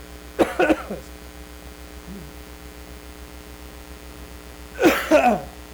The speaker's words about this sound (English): I've had a cough. Bear with me. Give me a second.